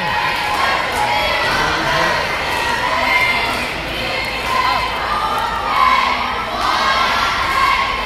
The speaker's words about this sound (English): The cheerleaders are out. Let's listen to their cheer.